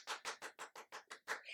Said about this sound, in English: And the crowd went wild. I don't know how the claps would translate, but I'm going to clap. Let's hear how it goes.